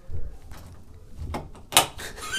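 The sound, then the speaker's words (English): A door that pushes in is shut with a low thump, followed by a scraping metallic slide and a sharp, loud clack as a sliding bolt lock snaps into place, in a school, with no voices. “There's a sliding bolt lock on a door that pushes in.”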